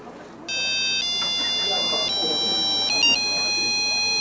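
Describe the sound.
A cell phone ringtone plays a steady, electronic melody of bright sustained notes that shift pitch every second or so, loud, over a murmur of background voices.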